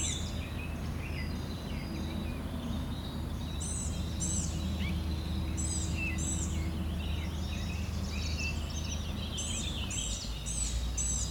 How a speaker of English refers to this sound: So, gnat catcher here, let's hit record and see if it catches it. Okay, within 2 seconds, so it's blue-gray gnatcatcher.